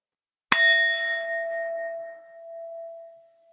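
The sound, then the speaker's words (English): A single meditation bell is struck once at the start of a body scan meditation, ringing out clearly with a bright attack and then a long, steady tone that slowly fades while humming on, alone in silence. “Prepare your mind for the sound of the bell.”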